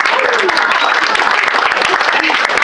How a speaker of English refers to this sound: So Punchline, round of applause for coming out for yourselves when you could be protesting.